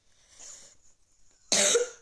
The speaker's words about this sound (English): Have you got the COVID? No. Stop coughing. I'll kick you out of the room.